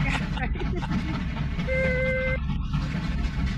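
A single reggaeton air horn blast from the Kevin and Bean party machine sounds out, a steady, bright tone lasting under a second, set against a dense, rumbling wash of background noise that continues before and after it.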